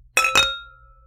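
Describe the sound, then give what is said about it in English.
Two quick bright clinks of wine glasses touched together in a toast, with a clear ringing tone that fades out over about a second. “Well, grab your wine, and I say cheers. Cheers.”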